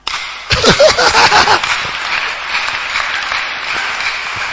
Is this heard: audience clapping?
yes